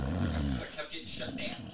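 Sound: man snoring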